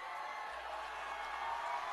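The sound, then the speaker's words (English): The Central basketball crowd roars steadily during free throws in a game against MICDS, a dense wash of shouting and cheering voices that holds a fairly even, loud level without pauses. “Central crowd making a lot of noise.”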